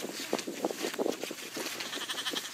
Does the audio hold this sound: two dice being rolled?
no